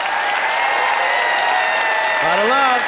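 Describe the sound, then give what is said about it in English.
An audience applauds loudly and steadily throughout, voting by applause for Pete Zedlacher as winner of a hometown-heroes debate, a dense wash of clapping, with a voice rising in a whoop or cheer over it near the end. “By applause, who thought that Pete emerged as the hero in this hometown throwdown, Pete Zedlacher.”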